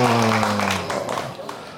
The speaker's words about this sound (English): The locals are getting all the applause.